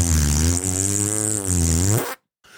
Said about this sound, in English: I ripped a huge fart before stepping out of his car, pal.